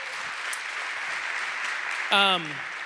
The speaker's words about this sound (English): And so I asked Fred if he would speak this morning. And Fred, you wanna make your way out? If you guys wouldn't mind giving Fred a big round of applause.